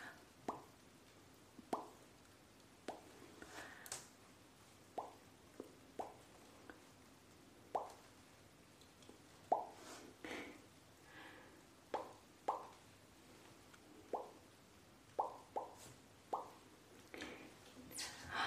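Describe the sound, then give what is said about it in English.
About twenty soft, wet plopping pops of bubbles bursting at an uneven pace, some close together and some spaced out, fairly quiet with no talking in between. “You wanna pop some bubbles?”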